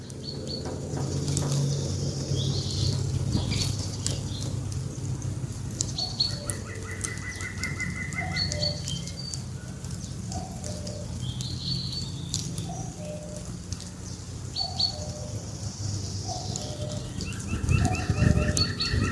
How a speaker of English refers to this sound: Awesome. That almost sounds like a cuckoo clock. It's so, so clear regular, and isn't it? Regular, yeah.